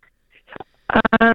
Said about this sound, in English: Your phone's breaking up like crazy. I'm having trouble. See if you can get somewhere where we can hear you.